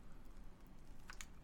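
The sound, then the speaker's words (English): A quiet sip of water, with soft wet mouth sounds and a couple of brief slurping clicks near the end, heard alone without any talking. “Oh, sip of water.”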